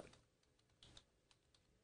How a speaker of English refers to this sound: Let me see here. I'm typing as I talk, and that doesn't work.